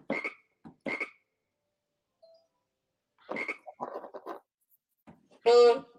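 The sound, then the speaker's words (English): A bullfrog croaks in a few separate bursts, deep and throaty, with a louder, drawn-out call near the end; no talking, and quiet gaps between calls. “Oh, that's a bullfrog.”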